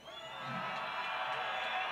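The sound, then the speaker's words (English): A crowd at a freestyle motocross show in South Africa cheers and whoops for rider Marc Pinyol in a dense, continuous roar that swells over the first half-second and then holds loud and steady, with scattered higher shouts poking through. “Man, the crowd loved him.”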